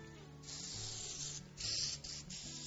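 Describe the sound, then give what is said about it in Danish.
A spray bottle hisses in a few steady bursts of glue onto cut-out printed paper laid on a lid, with short pauses between them and a quiet low hum underneath; no one speaks. “Så tager jeg sprayflasken og sprayer på den her.”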